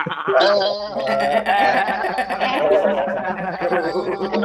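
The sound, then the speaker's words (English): Several voices mimic a goat's bleat together, wavering and overlapping in a loud, continuous chorus for a few seconds, with laughter mixed in. “What if everyone on the go-to meeting call makes the goat noise and we can try to encourage them?”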